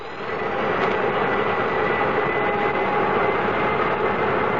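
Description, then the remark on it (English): The engines of the airliner Transways K-Flight 113 at port K2 spin up after ground control grants permission to start: a dense whooshing roar that swells within the first second, then holds steady and loud as a continuous rush with no voices. “Request permission to start engines.”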